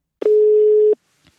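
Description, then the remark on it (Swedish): A single steady telephone ringback tone sounds for under a second as a call is placed to library designer Art Vos about libraries in the Netherlands, loud with a flat pitch, followed by silence and a faint click. No one speaks. “Jag ringer Art Vos för att höra hur det ser ut med biblioteken i Nederländerna.”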